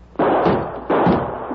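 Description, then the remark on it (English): Two loud gunshots, about three-quarters of a second apart, each a sharp crack followed by a brief ringing decay, fired to shoot off the lock of a cell door. “Two shots broke the lock.”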